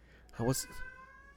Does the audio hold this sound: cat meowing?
yes